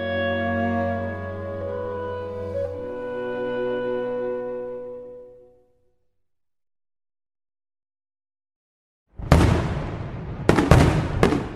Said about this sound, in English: Fireworks in Norway on May 17th. It's Norway's National Day.